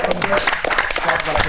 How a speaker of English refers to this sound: So can we clap that up?